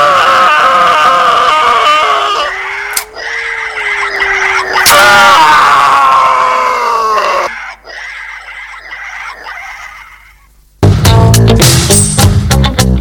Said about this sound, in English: you don't like the sound effect? It's pretty good, isn't it? Oh, I don't have to do that because it's already on it. Yeah, that's right. I don't have to scream, it's already on the sound effect. Pretty good, isn't it?